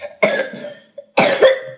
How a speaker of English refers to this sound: Uh-oh. Good job coughing into that elbow.